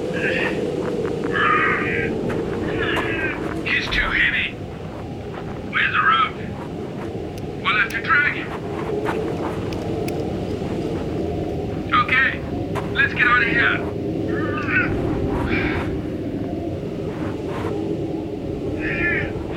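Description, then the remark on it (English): A steady, heavy engine roar of a lander craft in flight drones throughout, with short whining bursts cutting in every second or two over the continuous rumble. “You've badly damaged the lander. Got us back, didn't it?”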